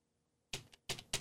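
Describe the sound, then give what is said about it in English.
Three sharp, clacky keystrokes on a computer keyboard, fairly loud, struck at an uneven pace after a moment of near silence, with no voices. “I copied and pasted from the Google over to the DuckDuckGo, and all of a sudden my keyboard doesn't work anymore.”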